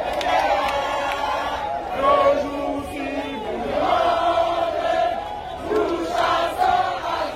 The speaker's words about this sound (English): Crowds here cheering and singing, crowding around to welcome military vehicles in the city of Port-Gentil. There are reports of similar celebrations in other parts of Gabon, as it seems the rule of President Ali Bongo has come to an end.